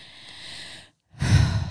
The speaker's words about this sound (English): Oh, yeah, we're doing the ASMR piece again. We're just heavy breathing. It's like so weird.